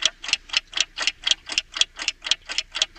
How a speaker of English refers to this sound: The sound of a ticking clock.